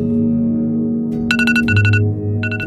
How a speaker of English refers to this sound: The journey began with an alarm beeping on a handset made by Apple, which has a 62% market share in America.